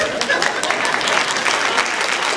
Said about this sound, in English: You can clap for him. Yeah.